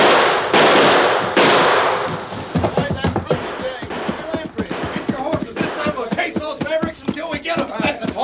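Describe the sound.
Three loud, sharp gunshots crack out in quick succession, fired at bank robbers fleeing toward their horses, each with a harsh, noisy tail, before excited voices start talking over the fading echoes.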